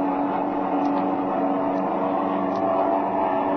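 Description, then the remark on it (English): A steady, continuous aircraft engine drone hums at a constant pitch throughout, loud with no pauses, as the plane flies alongside another aircraft and the pilot throttles this engine. “Here, I'll pull him closer and throttle this engine.”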